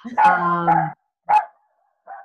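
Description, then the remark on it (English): A female dog lets out a long, drawn-out bark followed by a short sharp bark and a softer trailing yip, clear with no talking. “she was doing poetic barks.”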